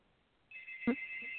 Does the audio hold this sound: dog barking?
no